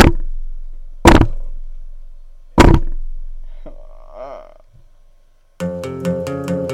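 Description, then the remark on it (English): Three heavy thuds of a person banging their head against a table, spaced about a second and a half apart, each ringing briefly, followed by a short wavering vocal sound and then music starting. “I must bang my head repeatedly now against the table.”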